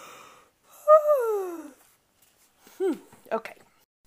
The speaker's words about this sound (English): I wonder if my yawning is making you yawn. Oh, let's have a yawn together. Ready?